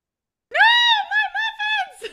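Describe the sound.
A shrill, high-pitched, loud human scream as a door is smashed in: one long sustained cry followed by three shorter wavering bursts, then a brief breathy sound at the end.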